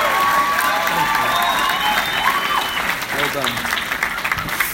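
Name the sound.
applause and cheering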